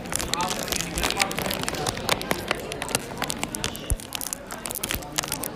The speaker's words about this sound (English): Okay, now get the stick. And put your marshmallow on. And start roasting on the crackling fire.